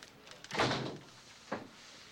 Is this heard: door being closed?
yes